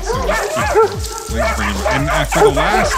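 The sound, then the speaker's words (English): Several whippets on a stage bark and yip in quick, overlapping bursts, loud, with high excited yelps mixed in against busy background noise. “Guys, bring the Whippets in. Can we bring all those dogs in here?”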